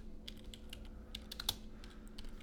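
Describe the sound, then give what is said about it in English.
Someone typing on a computer keyboard, a rapid, irregular run of soft key clicks with one sharper tap, over a low steady background hum and no voices. “What you typing?”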